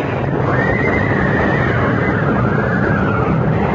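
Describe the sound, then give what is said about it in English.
Terrified lead horses of a horse-drawn coach whinny in a loud, drawn-out cry that rises and wavers, set against a dense, rumbling wash of noise that fills the whole moment with no speech. “First he rushed to calm the terrified lead horses so that they in return stilled the panic in their followers.”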